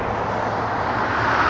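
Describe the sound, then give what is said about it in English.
Steady, continuous roar of traffic on a main road, a broad rushing noise with low rumble that swells slightly louder toward the end, no voices present. “Sorry guys, I'm near the main traffic way again.”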